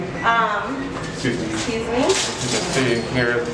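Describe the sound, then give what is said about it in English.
A heavy metal elevator door is hauled open with clunks, rattles and a scraping drag while voices talk over it. “So this is the elevator. Imagine if you had a wheelchair trying to, it's a hell of a journey. It's a very heavy door.”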